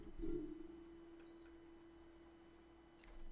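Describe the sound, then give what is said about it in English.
A faint, steady electrical buzz from a headphone amplifier hums at a constant low pitch for the whole stretch, with a short high-pitched blip partway through and no one talking. “That buzz you hear is the headphone amp.”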